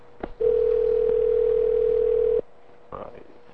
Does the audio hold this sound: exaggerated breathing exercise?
no